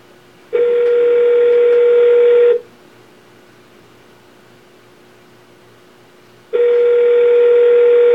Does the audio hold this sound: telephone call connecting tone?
yes